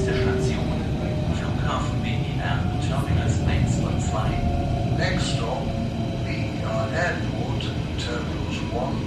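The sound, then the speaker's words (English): Inside an S-Bahn commuter train on the S9 line in Berlin, approaching the final stop at the new airport: a steady low rumble with faint squeals and tonal whines, and muffled, indistinct voices blending into the ride noise throughout. “I was pretty excited to hear these words as the train approached the final stop on the S9 line.”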